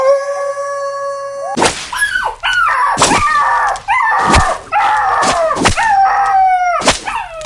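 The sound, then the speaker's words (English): A werewolf howl sound effect: a long, steady howl opens, then loud snarling bursts break in repeatedly, each followed by wavering howls that slide downward in pitch, with no talking. “All right, I think it's time to tame the werewolf.”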